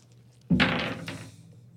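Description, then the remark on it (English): Dice are tossed onto a hard surface with a sudden thunk, followed by about a second of clattering and a second small knock before settling on a three. No one speaks. “Now, you just got to roll that dice.”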